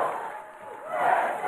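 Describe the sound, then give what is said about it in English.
A crowd in North Charleston, South Carolina, chants "Let's go!" in unison with Senator Tim Scott as he enters the 2024 presidential race. It is a loud, steady mass of raised voices that swells slightly toward the end of the short burst. “In North Charleston, South Carolina, Senator Tim Scott in a crowd chanting, "Let's go."”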